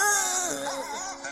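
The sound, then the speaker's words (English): A single drawn-out goat bleat, loud and strained, with a quavering, wavering pitch that sounds almost like a crying baby, heard on its own without any talking. “Nothing says Merry Christmas like a goat being slaughtered for charity.”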